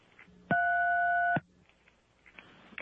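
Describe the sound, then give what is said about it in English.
A single loud electronic telephone beep from an automated phone menu holds one steady, bright pitch for just under a second and then cuts off cleanly, with only faint line hiss before and after. “If you would like to weep bitter tears of betrayal, press 2 and wait for the beep.”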